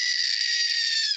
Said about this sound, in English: he spent $10 on this toy that he sent in, which is a screaming goat